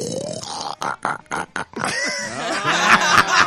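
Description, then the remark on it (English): A person imitates a pig call, starting with a few short choppy grunts and then breaking into a long, loud, strained squealing oink, with no other sounds. “All right, and let's get your best dinosaur impression or pig call.”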